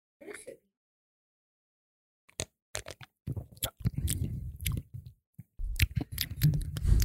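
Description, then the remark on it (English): Someone takes a sip of a hoppy beer: a brief wet slurp, then a run of swallowing gulps and moist mouth clicks, with no talking. “I'll allow you to have the first sip.”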